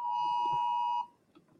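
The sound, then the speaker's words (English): A phone weather alert tone for a thunderstorm and tornado, in Dallas, Texas during heavy rain, sounds as one loud, steady electronic beep lasting about a second, then cuts off abruptly, leaving only faint background noise. “It's another thunderstorm. It's a tornado. I get those via email, and I get those via Like, see?”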